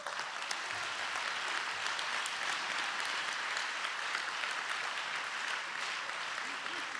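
An audience claps hands in a steady, dense wash of applause that holds at an even loudness for several seconds, with many overlapping claps blurring into continuous noise.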